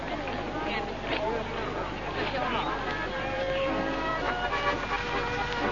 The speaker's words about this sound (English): Oh, look. There they go. It's the car.